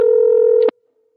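A loud, steady telephone tone hums for about half a second, then a short burst of a keypad beep cuts it off, leaving near silence. No one speaks.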